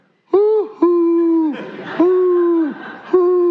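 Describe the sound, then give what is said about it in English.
A person imitates a dove's coo with four low, hooting tones, each held briefly with a slight downward bend, separated by breathy pauses. The voice is fairly loud. “That sound, you've heard it, right? Hoo, hoo, hoo, hoo.”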